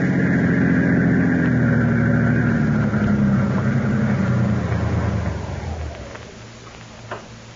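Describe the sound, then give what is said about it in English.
A car engine drones steadily, then winds down in pitch as the vehicle slows, fading to a quiet rumble with a small knock near the end. “I think I will go for that drive.”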